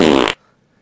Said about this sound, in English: Look, I'll get to your question about who... but as to who farted... as to who farted, that's a mystery.